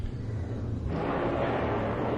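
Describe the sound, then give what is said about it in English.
An airplane roars overhead, a steady low drone that swells into a broad rushing noise after the first second and holds loud to the end, with no talking. “Airplanes.”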